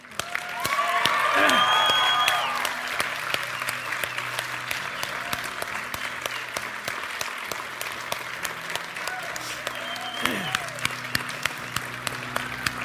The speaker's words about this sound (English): If you can whistle, I want you to whistle. I want you to cheer. I want you to applaud. I want you to give them a moment. Would you do that?